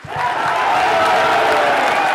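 A large crowd at an alt-right conference in Washington, D.C. cheers Trump's victory loudly, a dense, sustained roar of many voices that swells in the first moment and holds steady throughout, with no single voice standing out.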